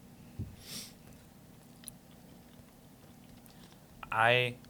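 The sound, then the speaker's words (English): Quiet chewing of mac and cheese, with faint wet mouth noises and a few small clicks, ending in a short burst of voice. “This is good mac and cheese.”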